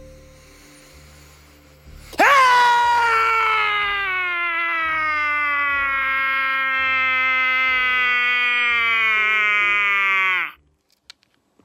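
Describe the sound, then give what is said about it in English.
A woman lets out one long, loud shriek of frustration, held for about eight seconds as her pitch slowly sinks, then stops abruptly into near silence. No one speaks. “She then posted a short clip of herself shrieking out in frustration.”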